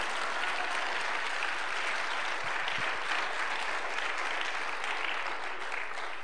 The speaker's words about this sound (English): And if you believe the word of God, you ought to give God a hand clap of praise today. Amen.